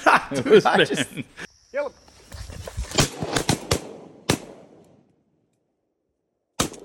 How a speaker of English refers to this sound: So the funniest thing about this video is you hear, pop, pop, pop, pop. We probably had seven or eight shots and seven ducks.